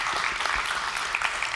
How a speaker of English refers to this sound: I know it's not easy for you all kids to sit through a sermon, but it is awesome to be together as an entire church family. And I know you can clap.